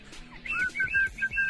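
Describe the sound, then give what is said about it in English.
A person whistles a short, clear tune of several quick notes that rise and fall in pitch, moderately loud, with no talking. “Was he whistling down there?”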